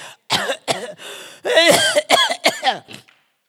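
cough

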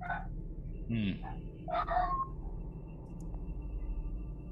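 dog barking in background

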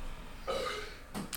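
burp

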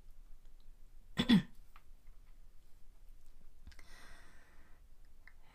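throat clearing

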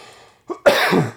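coughing

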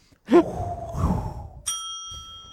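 bell ringing

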